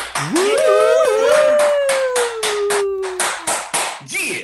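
Loud, steady hand clapping right at the microphone, about a dozen sharp claps in an even rhythm, while a long howling whoop rises and then slowly slides down over the first few seconds.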